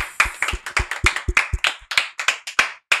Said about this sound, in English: So, yeah, let's give a round of applause for you guys.